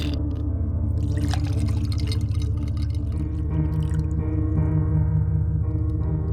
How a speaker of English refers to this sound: I poured another whiskey.